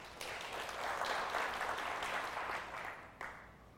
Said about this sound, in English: See what I mean? I had like two claps.